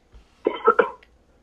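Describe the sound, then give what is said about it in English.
A quick burst of three throaty coughs in close succession, moderately loud, with quiet before and after and no talking. “I feel bad at making you cough, but anyway.”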